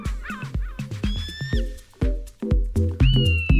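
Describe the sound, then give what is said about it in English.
A loud electronic seagull deterrent, meant to keep gulls away from people's food, plays harsh, squawking gull-like calls in repeated bursts, with high nasal cries over a throbbing, rhythmic lower pulse, and no talking. “It sounds like a gull saying, get off.”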